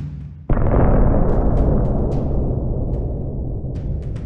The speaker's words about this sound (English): A muffled explosion came from the mansion farther up the hill.